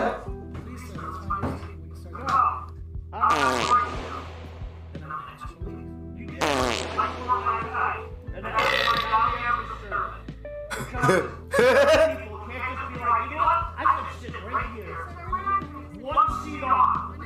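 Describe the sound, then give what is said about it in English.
A rapid string of loud, rumbling fart and burp noises, one after another, with short gaps between bursts and some voices mixed in throughout. “I'm putting in burps and farts.”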